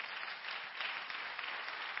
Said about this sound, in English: Give God a hand clap offering if you can.